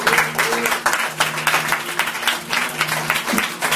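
A crowd claps their hands in sustained, dense applause, a steady wash of overlapping claps lasting several seconds over a faint low hum.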